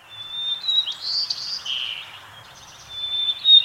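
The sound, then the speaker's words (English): A first-year white-throated sparrow practices its song in winter: thin, high whistled notes that waver and slide unevenly, with shaky, off-key phrases over a faint low background hiss and no talking. “As winter deepens, the first-year birds begin to get the syllables of their songs down, but they might sound shaky and off-key.”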